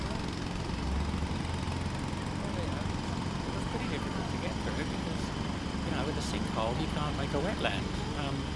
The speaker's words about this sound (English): That's they're doing roadworks outside. Have you noticed? Roadworks, yeah. So many.